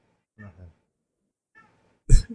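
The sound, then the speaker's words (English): An agitated pet cat lets out two short, strained meows a second apart, then a sudden loud, harsh burst, with nothing else in the background. “My cat's freaking out.”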